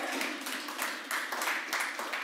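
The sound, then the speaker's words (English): A church audience applauds steadily during a sermon, many hands clapping together in a dense, continuous patter, with no talking over it. “I don't know if you're clapping because you got relationship problems or not, but that's okay, just clap.”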